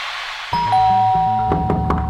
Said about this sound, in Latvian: Lūk, viņas jau klauvē pie durvī.